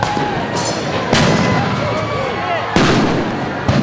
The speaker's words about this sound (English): They're setting off fireworks inside of it now.